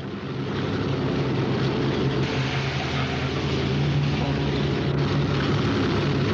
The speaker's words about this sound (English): As the plane goes